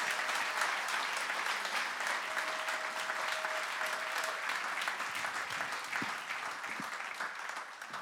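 A crowd claps steadily and loudly for several seconds, a dense, even wash of many hands with no voices standing out, tapering only slightly at the very end.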